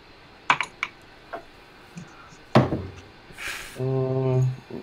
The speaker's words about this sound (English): 14. Yeah. 14. Dude, that metal dice sounds.